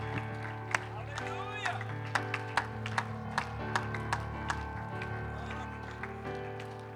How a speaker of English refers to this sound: Now give him one more hand clap and shout. Come on, give him some praise before you're seated tonight.